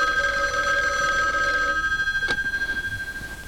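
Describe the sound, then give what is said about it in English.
A telephone rings with a steady, buzzing electronic trill, clear, with a brief sharp click partway through, as a call is placed right after the police leave. The trilling wavers rapidly throughout, and no one speaks. “And she makes a phone call to Dolores so quickly after the police leave, it's a wonder they don't hear it as they're going out the door.”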